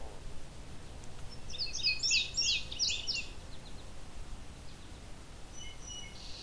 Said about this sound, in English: Good clear listen to this indigo bunting though. It's right above me on a dead tree. Some male.